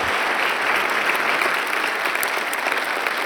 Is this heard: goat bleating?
no